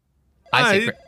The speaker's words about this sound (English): The phone just rang, which means we're going to...